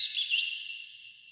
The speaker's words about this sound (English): Bird hops to his feet and he calls for help. He calls frantically to all the other bird friends.